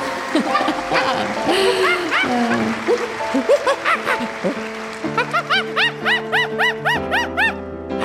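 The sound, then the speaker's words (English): A monkey, Riley the ice skating monkey, chatters and screeches at her acceptance speech at the 2010 ESPY Awards, starting with a jumbled burst of squeals and then a quick, steady run of high, rising shrieks that stays loud to the end. “Riley, the ice skating monkey!”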